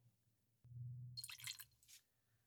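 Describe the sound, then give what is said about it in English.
Laphroaig 10 whisky being poured into a glass: a low gurgling stream begins abruptly, then bright splashing and trickling sounds rise over it before tapering off, with no one speaking. “It's a sign of greatness when he pours more than he should be pouring in the glass, ladies and gentlemen.”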